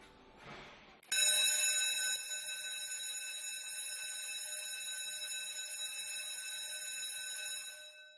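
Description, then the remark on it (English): An old bronze school bell at St. Stephen's College in Hong Kong is struck once after a brief rustling noise, its bright, loud tone ringing out and lingering steadily for several seconds with rich metallic overtones. “The old bronze bell at St. Stephen's College witnesses generations of students and alumni through their memorable youth.”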